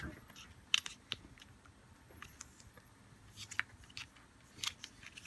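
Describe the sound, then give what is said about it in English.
Two small packets of dice are handled and opened, with soft crinkling and irregular sharp clicks and snips scattered over a quiet background. “Here is an unboxing of 2 packets of dice”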